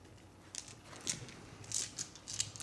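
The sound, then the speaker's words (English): A fistful of dice clatter and tumble across a hard surface in several quick, clicking bursts, fairly quiet, with no voices. “Oh, I don't like those dice. A fistful of dice.”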